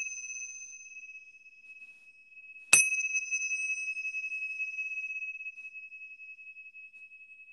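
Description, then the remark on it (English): Small Tibetan bells struck once as one of three chimes, a bright metallic clang that blooms into a long, high, shimmering ring slowly fading, with an earlier chime's tone still hanging in the air beforehand. “These are my Tibetan bells that I've had for years.”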